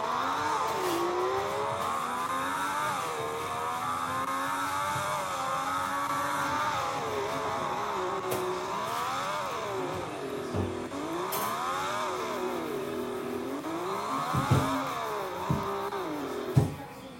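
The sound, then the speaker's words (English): Several race car engines drone steadily as the cars roll on the pace lap behind the safety car, an AlphaTauri among them, their pitch rising and falling together at moderate speed, with a few sharp mechanical clicks and bumps near the end. “Cars are rolling, and we are rolling as well. Followed, going behind the safety car.”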